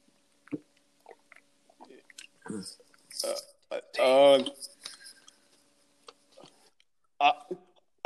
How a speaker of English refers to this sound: another sip of water for the drinking working man.